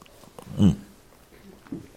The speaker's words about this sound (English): Let me sip the coffee that has been given.